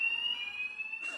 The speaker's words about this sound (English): Just had a fire alarm go off, that's great.